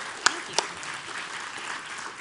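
A crowd applauding, a steady wash of many hands clapping at moderate volume, with two sharper individual claps standing out near the start. No one speaks over it.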